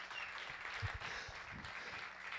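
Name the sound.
audience applause and clapping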